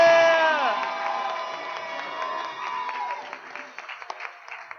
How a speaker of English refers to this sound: Countdown. 5, 4, 3, 2, 1. I think y'all made it through. Give yourselves a hand. Clap for yourselves. Yeah. Give yourselves a hand.